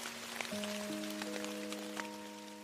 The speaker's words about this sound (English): You're listening to ….